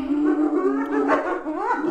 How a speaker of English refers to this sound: The first sound that I played sounded like this. And it's a hyena.